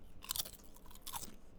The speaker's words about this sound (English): it's just crunchy. Yeah. The more that I eat the crispy taco, the more I like it.